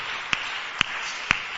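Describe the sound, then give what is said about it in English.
A church audience clapping for women standing on a stage forms a steady, hissy wash of sound, punctuated by three sharp, evenly spaced louder claps about half a second apart, with no voices. “Keep clapping for them.”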